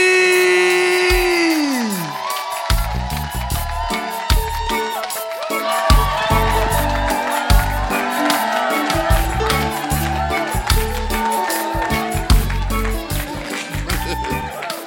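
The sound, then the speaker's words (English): An audience stands and cheers and claps loudly and continuously for about fifteen seconds to welcome their bishop, a dense wash of shouts and applause with rhythmic low thumps running underneath. “I want you to stand to your feet and with shouts of Jesus joy, welcome our very own Bishop”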